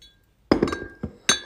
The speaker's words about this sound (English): I hope there's no reverberation against the glass. We have the microphone, which is my phone, leaned up against a bottle of Glenlivet, and it just clicked away.